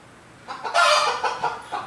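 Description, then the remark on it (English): A chicken clucks, a drawn-out squawky cluck followed by several shorter, choppy clucks in quick succession, with no one talking. “Chicken, I'm gonna put you back up.”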